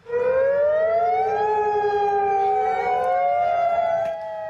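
A loud tsunami warning siren wails steadily in Kodiak, Alaska, just after 10 o'clock local time, following an 8.2 magnitude earthquake on the Alaskan Peninsula. Its layered tone glides slowly upward, holds, then slides gently down, with no voices and only a faint background rumble beneath it.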